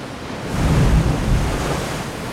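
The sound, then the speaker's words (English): Cold ocean surf crashes against a rocky Italian shore in the low light of early dawn, a steady roar that swells briefly near the start and then holds, with no voices present. “Between the crashing of the waves, Pyrrhus finally managed to get a firm grip on a rock.”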